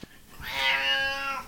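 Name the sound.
cat meowing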